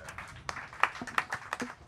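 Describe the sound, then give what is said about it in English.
An audience applauding the guests at an event hosted at The Hideout, a dense patter of overlapping hand claps with sharper individual claps popping out now and then, fairly soft and steady for about two seconds. “Let's have a round of applause for our guests.”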